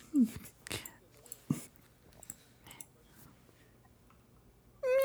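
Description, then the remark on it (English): A voice imitates a cat's meow: a brief, nasal, rising cry near the start, then a louder, drawn-out meow at the very end, with soft clicks and faint murmuring in between. “Meow.”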